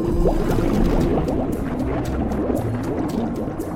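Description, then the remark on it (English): Water rushes and churns steadily as an outer airlock sea door opens, a loud, continuous gush with bubbling texture and occasional sharper splashes, no voices. “Opening outer sea door.”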